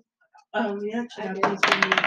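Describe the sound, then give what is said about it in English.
A short burst of voice gives way to a rapid clatter of shiny dice being tossed across a hard table, with many quick overlapping clicks that stay loud until the end. “Okay, now it's time for the fun part. Organizing the shiny dice.”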